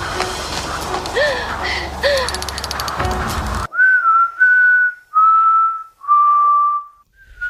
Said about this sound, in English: He's a good whistler. He is, yeah.